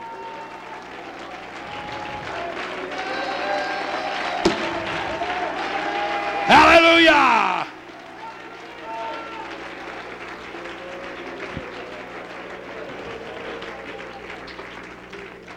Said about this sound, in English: Let's stand up and clap our hands and praise him together.